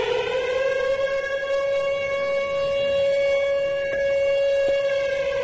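A fake siren: a steady, sustained siren wail holds one loud, unwavering tone with bright harmonics stacked above it, sounding alone and continuous for the full few seconds with no voices.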